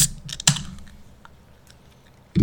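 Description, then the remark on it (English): A sparkling water can is cracked open: a sharp metallic click, then a second louder pop with a brief fizzy hiss that fades. Another clunk follows at the end. No one speaks. “So I know I did just crack a different sparkling water, but I'm not feeling it. So here's another one.”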